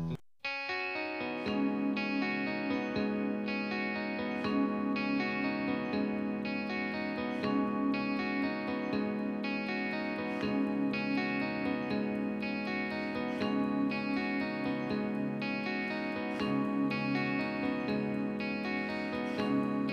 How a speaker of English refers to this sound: this song, of course, sounds like a shoegaze song.